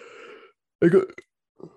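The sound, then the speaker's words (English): A person yawns: a drawn-out, low voiced breath, then a brief pause and a loud, rough gasping burst that trails off into a faint final exhale. “Of course, I have the yawn right there, the worst possible timing.”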